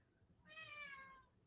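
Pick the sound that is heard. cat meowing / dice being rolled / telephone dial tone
cat meowing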